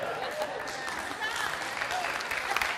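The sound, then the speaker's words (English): An audience claps and cheers in a steady, dense burst of applause, the many overlapping hand claps blending into a continuous wash that holds at a fairly even level throughout. “You can clap all you want.”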